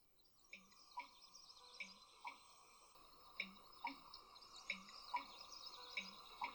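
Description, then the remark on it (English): A bittern marsh bird calls in a steady series of about a dozen short, knocking, drip-like pulses, evenly spaced, over a faint buzzing marsh background with insects or other birds. “This is what a bittern marsh bird sounds like.”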